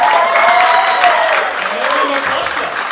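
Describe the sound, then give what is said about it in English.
Loud, steady applause from an audience fills the whole stretch, a dense wash of clapping with voices calling out over it before it eases slightly toward the end. “This has never happened in my podcast before, so give him a big round of applause!”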